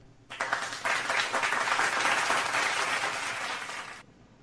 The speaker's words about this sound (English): I think that applause was for all of us.